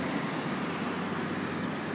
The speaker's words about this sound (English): There's a school bus right here.